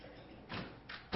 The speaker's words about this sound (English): I guess somebody's coming in the side door here. Give me a minute to close that. Somebody must not latch it all the way.